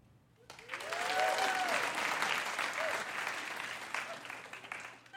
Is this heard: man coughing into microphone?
no